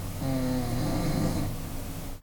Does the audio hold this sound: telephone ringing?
no